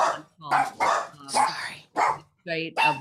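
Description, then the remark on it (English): A dog barks repeatedly, about six sharp, fairly loud barks in quick succession with brief pauses between them. “Everybody has a dog who's listening.”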